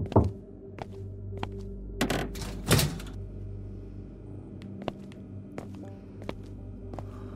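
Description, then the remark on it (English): Dull knocks and thumps against a door, a few scattered impacts with two heavier bangs near the start, followed by lighter clicks over a low steady hum, with no one talking. “Just knock 3 times if you want me.”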